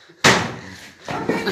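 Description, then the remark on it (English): A hammer slams down hard with a loud bang that rings out briefly, followed about a second later by a couple of softer, rougher knocks. “put the hammer back. I don't want to put the hammer down. My hammer. I will ride a dirt bike into here. I will take my pants off. Stop slamming that”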